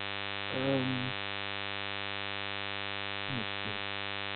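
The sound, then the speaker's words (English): Steady buzzing interference on a phone line, a constant electrical hum running throughout, broken by a few brief, muffled bursts of garbled sound near the start and end. “We got a lot of static.”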